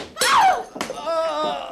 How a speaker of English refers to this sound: What did you hit him with, Ricky? The vase, sir. And a jolly good shot, too.